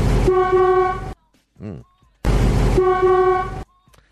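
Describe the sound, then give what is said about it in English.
Two long, loud, buzzy honks like an old-fashioned car horn, imitated by a voice, separated by a short pause with a brief rising vocal chirp in between. “Is that A, a 1956? What's up with all of these old ass cars?”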